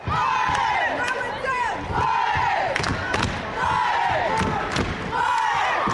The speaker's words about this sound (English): War cries erupt at every Crow basket,